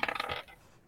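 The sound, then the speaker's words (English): Two dice clatter and tumble in a quick burst of sharp little clicks lasting under half a second, then settle into quiet, with no talking. “But I'm going to roll two dice for the ship.”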